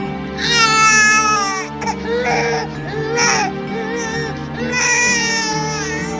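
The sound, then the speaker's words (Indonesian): A newborn baby boy wails loudly in long, strained bursts with brief gasping pauses, the cries rising and falling in pitch over a steady low background hum. “ratu yang tinggal di hutan tersebut sudah melahirkan seorang bayi laki-laki dan diberi nama Cindelaras”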